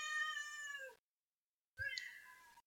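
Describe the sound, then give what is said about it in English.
A cat meows twice, loud, each call a drawn-out harmonic wail separated by a second of silence, with no talking. “You fucking cat.”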